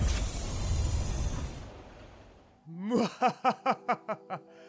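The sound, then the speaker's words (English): A train lets out a loud, sustained hiss of steam that tapers off, followed by a quick run of about seven rhythmic, tonal puffs as it pulls away. No one speaks. “we're on the scary train.”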